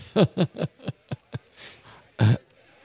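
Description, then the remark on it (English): A run of harsh, throaty coughs forming the intro of a song, about six in quick succession that grow weaker, then a pause and one final loud cough, with no music or talking. “The cough's nice, also. It's a cough intro.”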